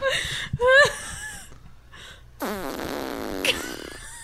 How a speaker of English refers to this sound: It sounds like a grandma fart, so maybe.